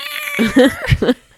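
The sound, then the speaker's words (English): A person voices a quick series of short, strained meow-like yowls, a vocal imitation of a cat, with a hint of laughter mixed in before trailing off. “his meows are like a mix between a pterodactyl and a baby crying.”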